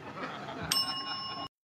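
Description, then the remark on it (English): A single bright bell ding, rung by Lorraine Newman in a comedy sketch, rings out partway through, its clear tone hanging for a moment over a murmuring crowd with some chatter before everything cuts off abruptly. “And every time Lorraine Newman rings a bell, Gilda Radner gives Jane Curtin a cookie.”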